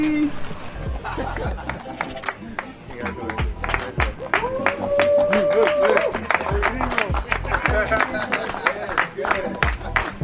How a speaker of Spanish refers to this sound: Entre risas y aplausos, fue bienvenido allí al seno de Los Ángeles FC, Ilie Sánchez con su banderita todavía de Estados Unidos y su certificado de ciudadano.